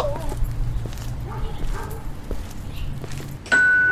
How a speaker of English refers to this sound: Hey, first off, man, don't be ringing my doorbell like that, man. Come on in the crib, man. Don't be ringing my doorbell 2-3 times.